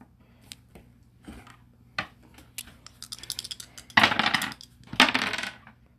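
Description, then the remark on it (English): Dice are rolled across a hard tabletop in a mech tabletop game, to see whether a mech's ammunition explodes, needing 6 or better: scattered light clicks and taps build up, then two loud, bright rattling bursts tumble and settle, with no voices. “Now roll to see if your ammo explodes. 6 or better.”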